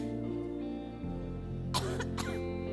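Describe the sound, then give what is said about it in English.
A preacher, just after a sermon, gives two short, harsh coughs close together near the end, with a bit of throat clearing, over a steady low tonal drone that runs throughout. “I did good to get through my sermon without coughing.”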